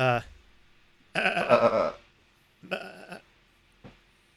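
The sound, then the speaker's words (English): A person imitates a sheep's bleat: a long, quavering baa, then a shorter one, and a brief clipped third sound trailing off. “Hold on, that's more of a goat.”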